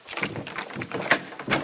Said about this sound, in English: Well, he says you can unlock the door now.